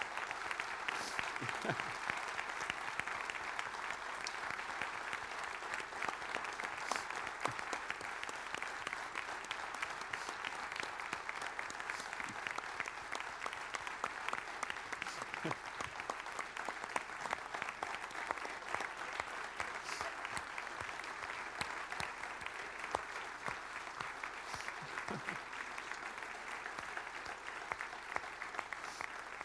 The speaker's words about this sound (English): Can you give Pastor Simone a great big round of applause?